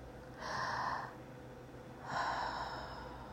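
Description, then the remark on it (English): A deep, airy breath drawn in, followed after a short pause by a longer, slow exhale, both clearly audible with no talking. “Let's just take a deep breath and exhale.”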